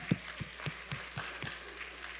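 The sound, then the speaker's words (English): Soft, steady clapping from an audience in a church, the claps landing in an even rhythm about four per second, with no voices. “Let's either applause or shh, we're in church.”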